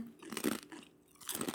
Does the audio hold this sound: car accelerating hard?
no